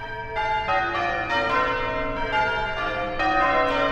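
Church bells peal in change ringing, a steady cascade of overlapping bell strikes about every third of a second, rich and ringing with long resonant tails, no voices present.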